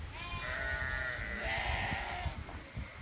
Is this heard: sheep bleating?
yes